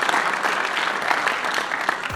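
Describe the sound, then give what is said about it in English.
A dense, steady wash of audience applause for the 2016 caricature artist of the year, many hands clapping at once with a crackling, even texture that stays loud throughout, with no voices standing out. “This applause goes on forever, so we're going to skip ahead just a little bit.”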